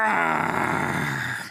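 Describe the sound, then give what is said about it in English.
A single loud, sustained roar of the Coco Loco monster, likely voiced by a person, with a rough, raspy, harmonic tone holding steady for over a second before tapering off. “And all of a sudden you hear the roar from the Coco Loco monster.”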